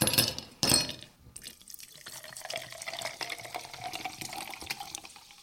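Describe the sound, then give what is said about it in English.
Sparkling mineral water is poured into glasses, a steady trickle and fizz after a couple of brief clinking or rustling bursts at the start, with no one speaking. “I have sparkling mineral water.”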